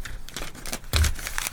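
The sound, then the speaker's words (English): Paper notes being crumpled, a dense run of crackling crinkles that swells sharply midway and continues loudly to the end, with no talking. “Now your notes are really crinkled.”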